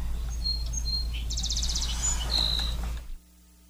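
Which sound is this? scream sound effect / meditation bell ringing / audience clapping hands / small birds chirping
small birds chirping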